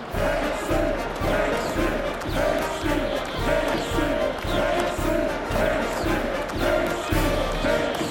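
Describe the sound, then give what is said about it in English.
A large baseball crowd cheers and roars continuously for the batter Casey as he steps up to bat, a dense, steady wall of voices with rhythmic swells. “And when, responding to the cheers, he lightly doffed his hat, no stranger in the crowd could doubt 'twas Casey at the bat.”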